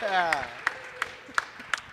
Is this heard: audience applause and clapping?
yes